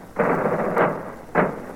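Three heavy, booming drum beats struck at a slow, even cadence, each a broad, rumbling thud that lingers briefly before the next, with no voices over them. Drums of a military band with Navy, Air Force, Marine and Army members in a procession opposite the Treasury building, District of Columbia.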